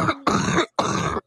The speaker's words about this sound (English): She's coughing up.